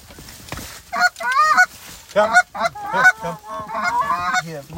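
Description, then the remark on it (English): A small bunch of geese honks in rapid, overlapping bursts, loud, with harsh nasal calls tumbling over one another in an irregular rhythm and no talking. “Hey, look at this little bunch of geese right here.”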